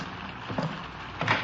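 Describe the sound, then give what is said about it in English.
Steady rain hisses through an opened door as a broad, even wash of noise, with a couple of brief louder bumps breaking through partway and near the end. No one speaks. “Hurry up. Don't let all the rain in.”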